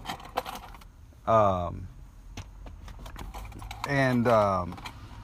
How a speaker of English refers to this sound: Sorry, looking for my keys.